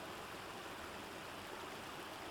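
A steady, unbroken hiss of a tropical downpour in the jungle, a dense wash of falling raindrops with no pauses, moderately soft and evenly sustained throughout, with no voices.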